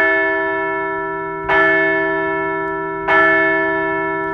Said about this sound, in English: After loss 11,211, the Phillies won two straight games to take the series and look much, much more like a competent baseball team. So let's ring the bell for a series win.